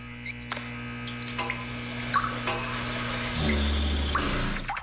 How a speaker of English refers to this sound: you see the same guy standing in a much nicer shower with one of those kind of fancy futuristic shower heads